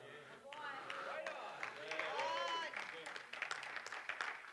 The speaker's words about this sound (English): I got the golf claps and I got other people like, I liked him first service, but...